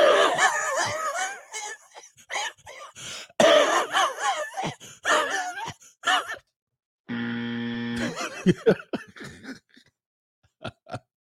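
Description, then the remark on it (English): A voice imitates an old smoker's harsh, hacking cigarette cough in a long, phlegmy fit of repeated rasping bursts, loud, broken by a brief steady tone and a few final sharp clicks. “Yeah, they had that old cigarette cough.”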